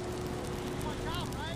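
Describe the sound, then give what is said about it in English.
Light drizzle hisses on hot, freshly laid asphalt where a road crew resurfaced the intersection of Harrison and Ashland Avenue in Chicago. It makes a steady, even sizzle with a faint crackle over a low constant hum, while brief muffled voice-like tones drift in near the end. “It was drizzling slightly, and the raindrops made the hot asphalt hiss.”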